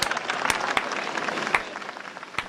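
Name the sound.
slow clap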